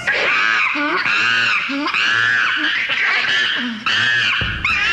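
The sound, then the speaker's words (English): A monkey screeches loudly and shrilly in a rapid series of rising, chattering calls that run almost continuously, with no talking over it. “You know what else has been the subject of evolutionary studies for centuries? Monkeys!”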